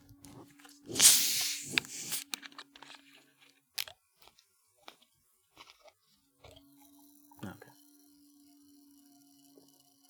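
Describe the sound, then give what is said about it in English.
A cream soda bottle is cracked open with a sharp hiss, followed by scattered tiny pops and crackles of fizzing bubbles that thin out over several seconds. A faint steady hum runs underneath. “You should be able to hear those bubbles.”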